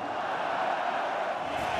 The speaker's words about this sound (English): Listen to that crowd.